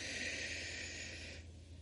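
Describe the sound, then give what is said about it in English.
A steady, airy inhale through the nose during a breathing exercise, lasting over a second and fairly soft, cutting off abruptly into quiet. No one speaks. “And when you're breathing in, I like to breathe in through my nose.”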